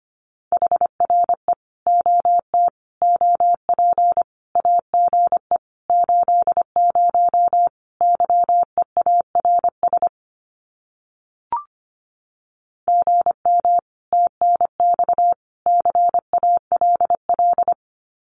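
Fast Morse code at about 25 words per minute sending common amateur radio QSO phrases: a steady mid-pitched tone keyed into rapid dots and dashes, with a pause and a brief click partway through before sending resumes.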